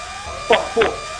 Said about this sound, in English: Oh, no, the buzzer's gone. He missed the last one. I think he said 4, but the buzzer had gone, unfortunately.